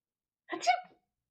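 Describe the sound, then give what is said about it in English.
A single short sneeze bursts out, about half a second long, with a breathy, voiced edge. Silence falls on either side of it. “But you sneeze butterflies and rainbows.”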